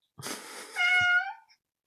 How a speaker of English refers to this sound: Yes, Buzz. That's the other cat.